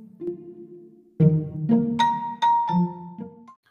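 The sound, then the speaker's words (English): A bell is struck with a hammer several times in quick succession, each ringing tone overlapping the last as it fades. The strikes are clear, with no voices. “Though his sister protested, he overpowered her, grabbed the hammer, and struck the bell.”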